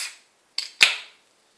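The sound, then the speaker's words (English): A 330ml can of 5.2% juicy pale ale, chilled about five hours in the fridge, poured into a pint glass and fizzing over: a brief opening hiss, then a sharp crackle that quickly fades into a short, bright fizzing hiss. No voices. “Whoa, that's lively. That fizzed out over the top.”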